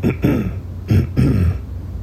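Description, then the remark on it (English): A soft, gentle throat clearing made in two short low rumbling bursts with a brief pause between them, quiet and restrained rather than forceful. “So you have to clear your throat gently.”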